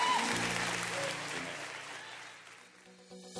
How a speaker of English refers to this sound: Clap your hands for the word of the Lord today.